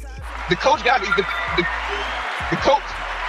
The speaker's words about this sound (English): I had to give you some round of applause for that shit there, man.